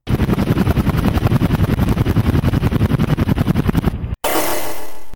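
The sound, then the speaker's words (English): A loud helicopter with rapid, steady rotor chopping for about four seconds, then a sudden cut to a short burst of harsh, hissing noise. No voices. “But then, behind me, a helicopter.”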